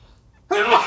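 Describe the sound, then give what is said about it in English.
A single sudden, loud sneeze bursts out after a brief quiet moment, sharp at the onset and trailing off quickly. “We need a sneeze button in the stew.”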